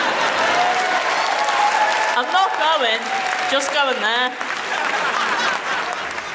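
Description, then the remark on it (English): Steady, dense audience applause fills the whole stretch, a broad wash of many hands clapping at an even loudness, with a man's voice speaking briefly over it midway. “Unsolicited advice can make you sound like a tool. Thank you. Clap.”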